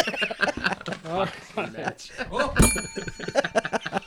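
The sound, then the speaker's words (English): A bell rings once partway through, its bright metallic tone sustaining and slowly fading while several people keep talking loudly over it. “What's with all the bells?”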